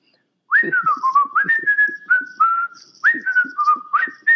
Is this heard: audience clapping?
no